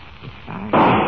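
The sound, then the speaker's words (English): A single loud gunshot at a cave, its bullet hitting a man's shoulder, bursts in abruptly after a quiet, low rumbling stretch, its sharp crack spreading into a harsh, sustained roar that carries through to the end. “Well, if that bullet didn't break your shoulder, I'll be very much surprised.”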